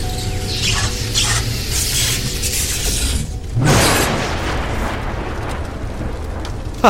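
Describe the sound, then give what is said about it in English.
A cast Lightning Bolt spell strikes, the lightning arcing out of a hand and slamming into Astoria's shoulder: a steady crackling, buzzing hum gives way midway to one loud, sharp electric crack, followed by a sizzling rumble that trails off. No one speaks. “So the lightning arcs out of your hand, and it slams into Astoria's shoulder, causing her to go back a few paces.”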